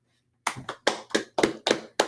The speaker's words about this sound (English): There's something, you know, Jeb Bush, what a guy. Please clap.